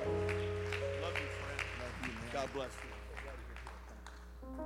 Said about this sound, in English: Let's clap our hands one more time unto the Lord, thanking Him for the man of God in Jesus' name.